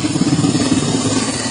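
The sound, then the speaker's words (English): A helicopter drops water over the out-of-control Bootleg Fire: a loud, steady engine drone with a low, throbbing hum, layered over a broad rushing roar that holds constant throughout, with no voices. “This video showing him pulling back as a helicopter drops water over a fire raging out of control.”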